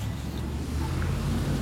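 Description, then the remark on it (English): A steady low rumble of road traffic, with constant engine and tire noise at an even loudness and no voices. “Gotta run across the road so I don't get my ass hit by a car.”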